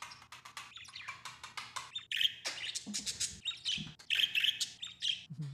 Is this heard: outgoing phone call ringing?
no